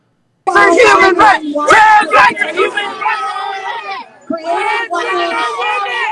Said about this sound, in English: Notice it's all men screaming.